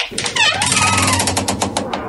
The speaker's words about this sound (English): Oh, those damn hinges.